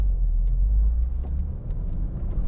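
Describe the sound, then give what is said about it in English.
A car rolls slowly along a wet road through roadwork, its engine a steady low rumble with a faint hiss of tires underneath, continuous with no voices. “We'll just dawdle along through this wet road.”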